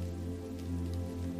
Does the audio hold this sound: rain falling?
yes